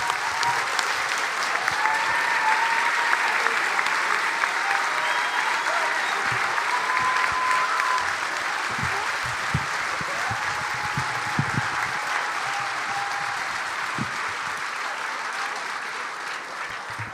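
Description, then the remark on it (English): Sustained applause from a standing crowd for a woman, a dense, steady wash of clapping holding at an even loudness for the whole stretch, with faint whoops and cheers rising above it. “Can everyone stand up and give her fucking applause?”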